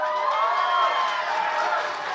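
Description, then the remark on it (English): An audience cheers and applauds in answer to being asked who thinks Will Smith is the lead of Independence Day, a steady, loud wash of noise with whoops and raised voices running through it for about two seconds. “Who thinks Will Smith is the lead of Independence Day? Applaud.”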